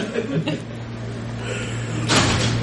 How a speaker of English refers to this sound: Is it cool if we shut the doors back here?